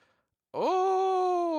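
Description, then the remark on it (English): A loud, ghostly yawn starts abruptly after a brief silence, its voice sliding upward in pitch and then holding a long, steady, moaning tone to the end. “That was just a yawn.”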